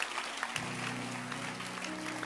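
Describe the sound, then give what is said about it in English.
An audience claps their hands together in a dense, steady burst of applause lasting a couple of seconds, with a low hum running underneath. “Clap your hands.”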